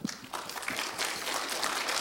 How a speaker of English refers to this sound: Let's just clap for that.